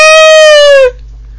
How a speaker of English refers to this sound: Now everyone's just going fangirl scream. Oh dear! Isn't it good? Everyone does a fangirl scream. One, two, three.